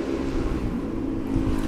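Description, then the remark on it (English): A motorbike rides past, its engine a loud, steady low rumble with a droning growl that holds for under two seconds, with no voices over it. “Sorry, there was a motorbike riding past just as you asked that question, at the end of the question.”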